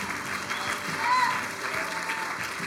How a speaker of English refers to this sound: Give Jesus a round of applause. Loud.